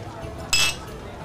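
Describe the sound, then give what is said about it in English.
Glasses clink together once in a toast, a bright, short ringing chime that fades quickly against a low murmur of background noise. “I'll raise my glass to that, mate.”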